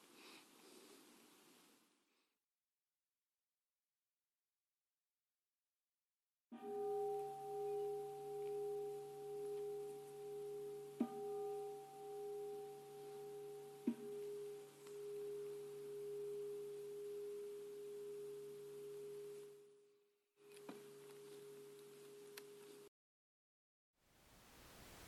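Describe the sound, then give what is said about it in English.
A meditation bell, rung to mark the transition from a guided meditation practice to the end-of-session group practice, rings out in a long, steady hum with a gently pulsing wobble, its low tones sustaining for many seconds before briefly cutting off and sounding again. No one speaks. “So in a moment, I'll ring the bell as a way of transitioning from the guided practice to our usual end of session group practice, which I'll introduce after the bell.”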